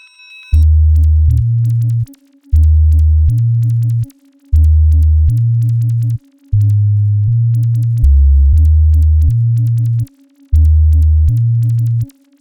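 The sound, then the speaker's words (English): A loud, deep synth bassline repeats in short two-note phrases separated by brief gaps, sprinkled with tiny, very high squeaky chirps that tick percussively over the groove. No voices. “So what you'll hear next is the bass in combination with what I call chirps, just really high little squeak sounds, purely percussive and textural.”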